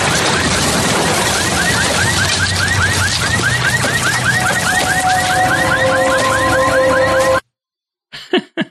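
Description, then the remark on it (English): A meteorite slams into a chicken shack: a loud, sustained roaring crash with rapid, repeating warbling squeals layered on top, then a sudden cut to silence and a few short, sharp bursts. “A meteorite hits the chicken shack.”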